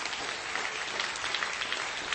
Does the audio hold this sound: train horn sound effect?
no